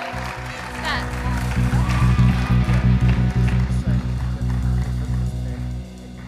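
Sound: audience applause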